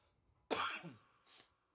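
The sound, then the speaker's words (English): A single sharp cough bursts out, followed by a brief raspy throat-clearing sound, with quiet room tone before and after. “No, that was a cough.”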